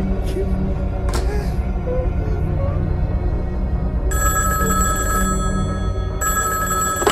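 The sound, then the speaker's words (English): A telephone rings in two clear bursts, the second cut off at the end, its bright trilling tone cutting through a steady, dense rumble of low background noise. “Check the other phone. We've traced the call.”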